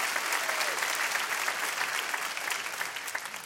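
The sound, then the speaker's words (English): An audience claps its hands during a sermon on the Holy Spirit being fully God, in a dense, steady burst of applause that stays loud and even for several seconds, many hands overlapping into a continuous crackling wash. “Come on, if you believe that, let's clap our hands in this place.”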